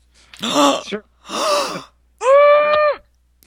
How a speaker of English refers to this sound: Gasp.